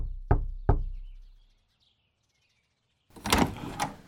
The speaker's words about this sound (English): George Corwin walks alone to the English mansion and knocks on the large door